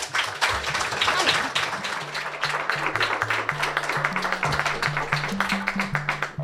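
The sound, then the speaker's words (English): An audience at the Sitka Tells Tales storytelling event, broadcast live on KCAW, applauds steadily for the full length, dense overlapping claps filling the room, with a low stepping bass line of music playing underneath. “Let's do one more clap for Connie.”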